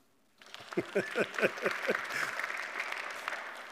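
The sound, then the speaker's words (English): An audience bursts into applause, steady clapping from many hands swelling quickly and holding at a lively level, with a few brief vocal whoops rising over it near the start. “That's where you clap.”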